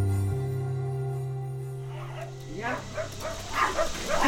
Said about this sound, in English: Do those dogs know you?